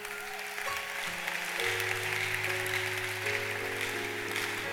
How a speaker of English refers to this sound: King David, baby. Clap for that guy.